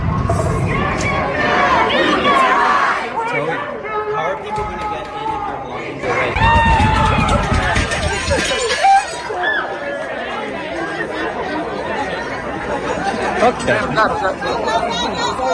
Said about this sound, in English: The Daily Californian, that's that campus newspaper, reported that protesters chanted "killers on campus" as they banged on the windows outside where the IDF soldier had been invited to speak in the midst of Israel's genocide in Gaza. Listen.